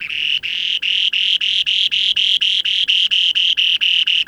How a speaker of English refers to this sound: That's the song of one of the rarest birds on Earth, the spoon-billed sandpiper. I recorded it in the far northeast of Russia, where as few as 100 remaining pairs of this mysterious little sandpiper with a remarkable spoon-shaped beak go to breed